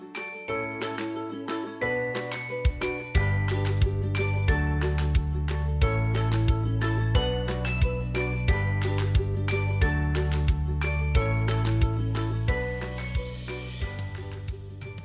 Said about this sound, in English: Okay, well if that's the case, why don't you play the intro music while I prop up my pillows ready to listen to some poetry?